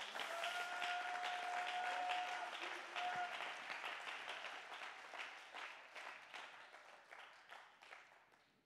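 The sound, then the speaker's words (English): An audience claps hands together in praise, a dense burst of applause that slowly thins and softens toward the end, with a faint steady tone ringing over the first few seconds. “Somebody clap your hands and give him the praise.”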